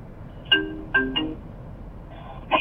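A call placed to a mobile phone rings with a short electronic ringtone melody, a few bright chiming notes in quick bursts with brief pauses between, clear, with no one talking.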